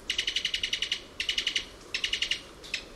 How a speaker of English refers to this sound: This staccato call comes from the throat of a Cuban Tody. A bird that's almost indescribably cute, and the top of the must-see list of any birder heading for the West Indies.